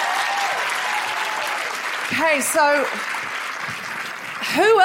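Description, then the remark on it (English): Audience applause fills the whole stretch as a steady, dense wash of clapping, while a voice speaks briefly over it with rising, animated phrases. “Well, that's a very generous feminist act, and we applaud you.”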